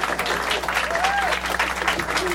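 Steady, dense applause from an audience for the round two competitors, a continuous wash of many hands clapping at a fairly loud, even level, with a faint whistle or cheer rising briefly above it.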